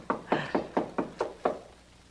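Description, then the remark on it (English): Seven firm knocks on Mr. Stone's apartment door at 2 in the morning, in a quick, steady rhythm, fairly loud, followed by a moment of quiet with no voices. “There's one way to find out. That's his apartment door.”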